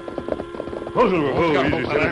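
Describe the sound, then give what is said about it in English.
Horses gallop, the Lone Ranger and Tonto riding at breakneck speed down a trail that follows the railroad, in a quick, steady drumming of hoofbeats over a low hum for about a second, then a louder, wavering tonal sound takes over while the beat continues faintly underneath. “The Lone Ranger and Tonto rode at breakneck speed down along the trail that followed the railroad.”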